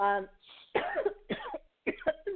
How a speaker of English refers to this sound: No, that's not a coronavirus cough. That's me choking. Hope not. That's me choking on exactly coffee.